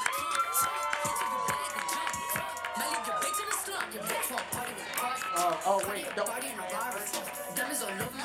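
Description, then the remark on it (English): An audience cheers loudly and steadily for about eight seconds to welcome the next debater, a dense wash of whoops, shouts and scattered clapping with excited voices rising over the roar. “Guys, make some noise”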